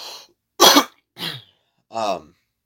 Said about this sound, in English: Oh, I got a cough again. I'm so sorry.